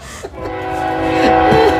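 A train horn blares in a steady, sustained chord over the low rumble of a rolling train, growing slightly louder toward the end, with no voices.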